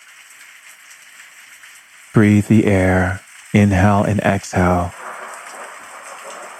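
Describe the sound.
Steady heavy rain hisses evenly throughout, a constant wash of noise, while a calm voice speaks briefly over it in the middle.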